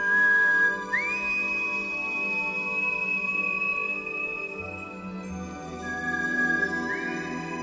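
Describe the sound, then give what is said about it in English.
A long, clear whistle from an alien creature, whistling out to its family at night from a backyard, slides upward and holds a steady high note for several seconds, then rises again near the end, over a low, sustained musical drone. “And then we kind of get a little scene of the alien being sad, missing his family. He whistles out to them.”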